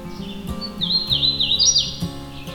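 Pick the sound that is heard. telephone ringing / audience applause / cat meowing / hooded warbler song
hooded warbler song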